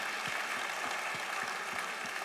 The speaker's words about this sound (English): Yeah, go ahead and clap on that.